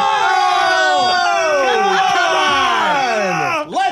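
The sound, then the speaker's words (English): A crowd yells and cheers loudly and continuously, many voices overlapping in rising and falling whoops and shouts that sustain for several seconds before a brief dip and a final burst. “Okay, now you can yell.”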